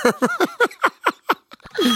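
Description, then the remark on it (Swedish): A mobile phone rings with a quick, laugh-like ringtone: about eight short, bright bursts, each sliding downward in pitch, in a steady rapid rhythm before a longer tone at the end. “Vad i helvete är det där? Enkelt är klart. Nå, vänta. Det här är min telefon.”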